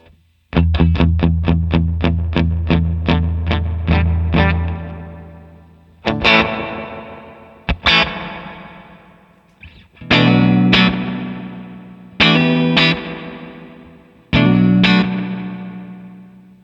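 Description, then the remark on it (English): An electric guitar runs through a VVco Ghostly Reverb pedal while a control is adjusted, first a quick run of repeated picked notes, then several loud chords left to ring out with long, washy decaying tails. No one speaks. “Ghostly Reverb Pedal Envelops Us”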